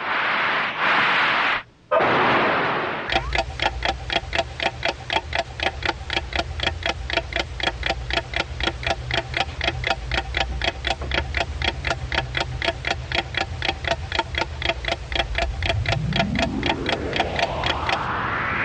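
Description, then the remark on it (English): A time-signal clock marking Pacific Daylight Time ticks in a fast, steady rhythm for about fifteen seconds over a low hum, and a rising tone sweeps upward near the end. No one speaks. “And though our thoughts were on baseball, at the tone, Pacific Daylight Time will be 5-4 exactly.”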